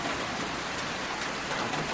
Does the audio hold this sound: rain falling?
yes